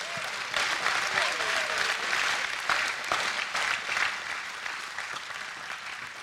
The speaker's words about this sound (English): Let's clap for them now.